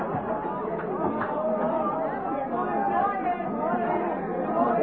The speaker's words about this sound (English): Hear what they're singing? Dublin, hear that? That's the Dublin crowd trying to outshout the Cork crowd that are singing live, alive, all.